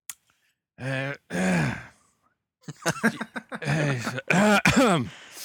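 A person nearby makes a series of short, voiced coughs and throat-clearing noises, coming in a couple of separate bursts with brief pauses, close and moderately loud, with no clear words.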